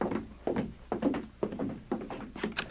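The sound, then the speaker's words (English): Knocking on a sheriff's door in the evening: a steady series of dull, solid raps, several of them falling in loose pairs, repeated for a few seconds at a moderate, slightly muffled level with no talking. “Someone's at the door.”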